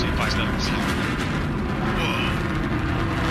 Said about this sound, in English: Listen to the roar of the BE-3 engine. We are just about to pass through max Q, maximum dynamic pressure.